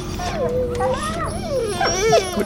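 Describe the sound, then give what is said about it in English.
Dogs whine and whimper continuously in high, wavering, sliding tones, steady in loudness, with several overlapping cries rising and falling over a couple of seconds. “The dogs, they're sitting, lying down. You did that? You made them quiet?”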